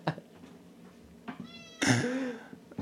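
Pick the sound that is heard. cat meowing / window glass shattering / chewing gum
cat meowing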